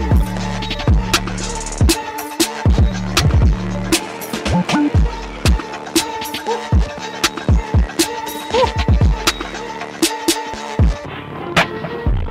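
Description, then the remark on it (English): An instrumental beat with booming, gliding bass kicks and sharp percussive snaps hitting in a steady, punchy rhythm, with no vocals over it. “You heard that, right? We got more beats though”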